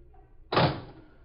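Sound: car door shutting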